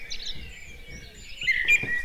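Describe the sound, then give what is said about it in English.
Several male birds sing at once in a dawn chorus, thin high chirps and trills overlapping, with a brighter, louder burst of song near the end. “and in this plot of land there's enough food for my wife, it's the male birds that sing, and my children, and in that plot of land will be a suitable place to hide my nest and support my nest, and a suitable place to shelter in the rain.”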